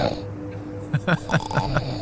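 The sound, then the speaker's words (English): Loud snoring, a run of five or so short, rasping snorts in quick succession over a low, steady hum. “The snoring kicks in again.”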